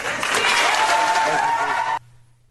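Loud, dense audience applause for a mayor addressing a Board of Education fills the air steadily for about two seconds, a broad wash of many hands clapping together, then cuts off abruptly into near silence.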